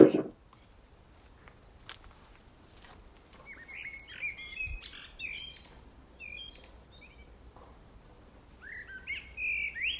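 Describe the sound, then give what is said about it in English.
Blackbird song drifts through a quiet garden with dwarf apple and plum trees, with fluting, warbling phrases coming and going, growing more frequent toward the end, over a low background hum and a few faint clicks. “The blackbirds at this time of year are unbelievable, because it's all the babies, all the little fat, chubby babies waddling around on the ground, you know?”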